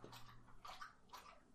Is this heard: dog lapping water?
yes